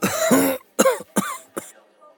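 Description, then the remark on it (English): A man's raspy cough: one longer harsh burst followed by three shorter hacking coughs in an uneven rhythm, with brief quiet gaps and no talking. “He coughs.”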